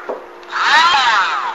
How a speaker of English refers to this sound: I think I mentioned I was using a Dremel to do my sanding for me. It's a Dremel lithium ion cordless. It's 10.8 volts, 5,000 to 35,000 RPM model 800.